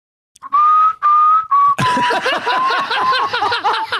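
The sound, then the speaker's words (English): Someone whistles the short theme tune of a TV station, three steady sustained notes, then breaks into laughter while the whistled melody wavers on beneath the giggling. Fairly loud. “and can you whistle the theme music of that station?”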